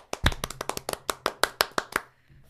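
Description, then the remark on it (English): A clapping sound effect: a quick burst of about a dozen sharp hand claps, fairly loud, in a brisk, slightly uneven rhythm before stopping, leaving a faint low hum. “We need a clapping sound effect.”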